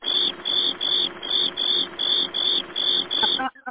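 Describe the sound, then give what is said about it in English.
A cricket chirping sound effect: a steady, evenly spaced series of high, buzzing trills, loud, with no one talking. The chirping cuts off abruptly near the end. “I can give him the crickets.”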